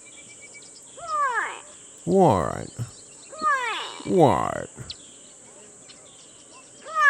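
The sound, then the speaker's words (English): A gray go-away bird gives several loud, nasal, downward-sliding wailing calls in uneven bursts over a steady high insect buzz; a voice briefly speaks among the calls. “This is the gray go-away bird.”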